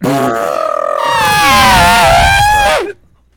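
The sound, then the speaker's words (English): A person loudly imitates an elephant's trumpet: one long, brassy, wavering blare lasting close to three seconds, rising and bending in pitch before cutting off abruptly into silence. “Nah, trunk is what an elephant got. It go...”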